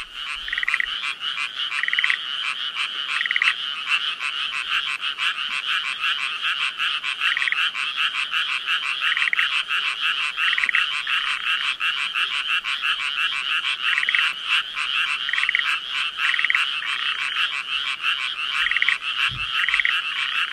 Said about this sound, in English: Got this off my dad. From Japan, this is. I don't know what type of frog it is.